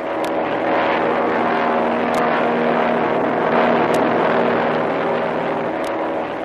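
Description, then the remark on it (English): A loud, steady airplane engine drones without a break as the plane drops lower and circles over the calm sea where a storm struck the Manila Merchant, its low humming tones holding an even pitch, with a few faint high ticks recurring every couple of seconds and no voices. “we've been flying over the area where the storm struck the Manila Merchant”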